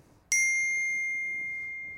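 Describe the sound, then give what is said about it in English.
A single bright phone notification chime rings out clearly on its own, with a crisp attack and a clean metallic tone that slowly fades over about two seconds. “Are you worrying that was your phone?”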